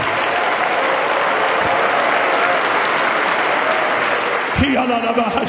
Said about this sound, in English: One more time, let's clap our hands together and give God the praise.